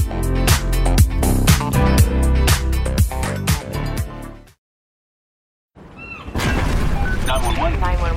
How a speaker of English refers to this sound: Emergency? I'm on a cruise ship! There was an explosion! Oh my god, the ship is sinking!